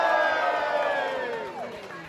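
A loud crowd cheers and whoops for number 67, many voices blending into a sustained roar of shouts that gradually fades over a couple of seconds.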